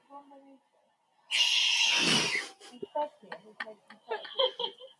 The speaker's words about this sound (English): There's a remix. The Screaming Marmot remix.